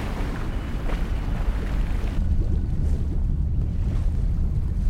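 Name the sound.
ocean waves and wind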